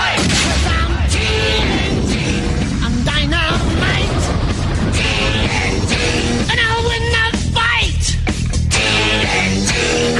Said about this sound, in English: Yeah, there we go. Yeah. Little explosion.